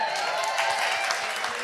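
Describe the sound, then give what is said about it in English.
A short burst of steady applause at a panel event, for the designer of issue 4 of a magazine, many hands clapping together in a dense, crackling wash that holds at an even level from start to finish. “you actually designed issue 4, which should get a round of applause, I think, at least.”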